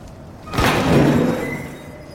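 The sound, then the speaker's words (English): An old door hanging off its hinges is shoved open as people enter a creepy old building, with a sudden scraping groan that swells, then drags out for about a second before fading, with no voices. “Getting in's pretty easy. Picture this. The doors are hanging off the hinges, and other teenagers have taken pot shots at the windows.”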